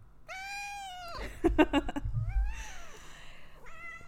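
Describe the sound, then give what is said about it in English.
A pet cat named Grim meows loudly, several drawn-out, wavering cries in a row, with a brief rustle or thump partway through and a short final meow at the end. “It's my kitty. Say hello.”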